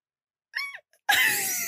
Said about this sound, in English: That noise. I don't know what noise my body just emitted. I was trying to breathe. Okay, your breathing is good. Breathing is good. I was trying to like breathe and also say okay at the same time, and just nothing came out other than a squeal.